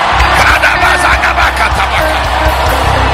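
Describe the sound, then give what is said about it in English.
A church audience screams and shouts together at the preacher's call in a loud, continuous roar of many overlapping voices, with sharp yells rising and falling throughout and no pause in the noise. “Come on, scream like I'm talking to you.”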